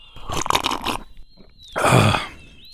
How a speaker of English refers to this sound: And what I'm going to be doing in this moment is taking a sip of some scrumptious tea.